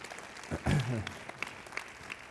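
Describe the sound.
An audience applauds, many hands clapping in a dense, steady patter at moderate volume, with a short voiced shout rising over it near the start.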